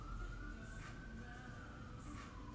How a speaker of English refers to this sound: Hearing shit like that, sirens and shit.